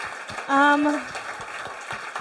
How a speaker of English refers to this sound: Can we please get a big round of applause to the lovely ladies?